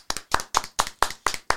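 Seven sharp, evenly spaced claps in a steady rhythm, each a crisp slap of hands, heard alone with no voices. It sounds more like a single clapper than a crowd's wash of applause.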